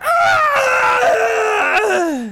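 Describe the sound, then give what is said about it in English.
A person voices the agonized scream of a necromantic entity being consumed by holy light: one loud, strained, harmonic howl lasting about two seconds, wavering in pitch and sliding downward into a groan as it fades. “And you note, as this holy light consumes parts of this necromantic entity, it screams out in pain and suffering.”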